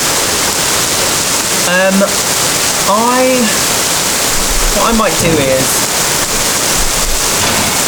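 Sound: torrential rain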